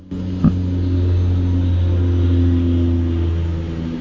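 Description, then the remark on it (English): An aeroplane drones overhead, a steady, fairly loud engine hum with a low rumbling tone that holds constant for several seconds with no voices. “Oh, as soon as I said engine, there's the aeroplane.”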